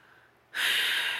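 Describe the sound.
A voice imitating a person snoring: a soft breathy lead-in, then one loud, harsh, raspy snore held for a moment, with no other sounds.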